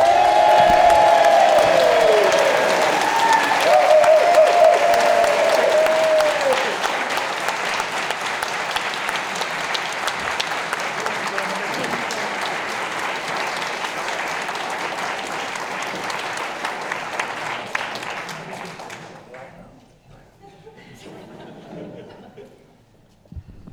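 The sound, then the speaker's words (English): A crowd applauds Tom Baker steadily for nearly twenty seconds, with whoops and high cheering in the first few seconds, before the clapping thins and fades into quiet murmurs. “An equal round of applause for the equally delightful Mr. Tom Baker.”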